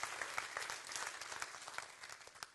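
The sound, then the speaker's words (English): A church audience claps steadily to praise God during a sermon, many overlapping hand claps forming a dense, bright patter at an even, fairly loud level with no talking over it. “Come on, clap because God's good right now.”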